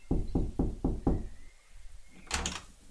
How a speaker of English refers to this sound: So I shuffle up the street and knock on the door.